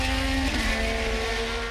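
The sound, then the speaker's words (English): An Indy race car's high-revving engine roars loudly and steadily, its pitch dropping sharply about halfway through as it speeds past. No one talks. “Have you ever wondered what it's like to drive an Indy car at 200 miles per hour in heavy traffic?”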